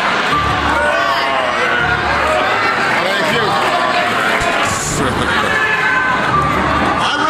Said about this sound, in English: Everybody settle down. This is a feisty crowd.